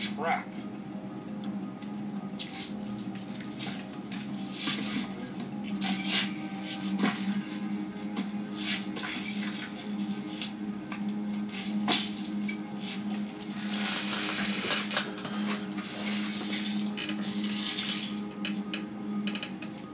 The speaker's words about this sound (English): Definitely told myself I was going to get another fucking chair for when I record, because this shit sound like grandfather rocking chair. This shit is too much, man.